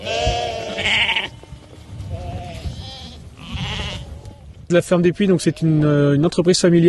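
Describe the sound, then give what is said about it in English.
A flock of sheep bleats in wavering, overlapping cries while a sheep farmer calls to them at his family farm near the town of Dreux in France's Centre region, the bleats growing louder toward the end. “a sheep farmer, calls to a herd of his sheep at his family farm, Ferme du Puy, near the town of Dreux in France's Centre region.”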